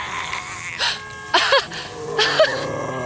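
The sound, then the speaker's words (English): An old car horn, on the museum's Model T coming down Main Street from the center of town, honks in a few short, reedy blasts with a bending pitch, sounding three or four times in an uneven pattern over a faint background hum. “It sounds like an old car horn.”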